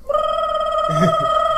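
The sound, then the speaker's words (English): A fire alarm bell rings out loud and continuous, holding one steady, shrill tone for the whole stretch, with a brief muffled rustle partway through. “a fire alarm, and there's that awkward moment where they turn towards that you.”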